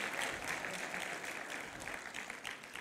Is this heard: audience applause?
yes